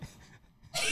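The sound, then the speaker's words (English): A dog sniffs and licks right up against the microphone: a soft snuffle, a brief lull, then a loud, breathy burst of sniffing and mouth noise at the end. “He licked the mic. Ew. Yeah. Your dog is weird. All he did was sniff the mic.”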